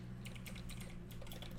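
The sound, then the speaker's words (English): Rapid, uneven clicking of keys being typed on the keyboard of a newly built PC, fairly quiet, with a steady low hum underneath and no one speaking. “I wonder how loud my keyboard is, if it's going to pick up on the loud, mic.”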